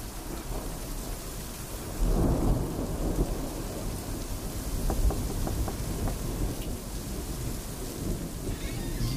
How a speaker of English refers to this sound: Welcome. Come in from the storm. You are chilled. Stand by the fire to get warm. It is a truly dark and terrible night.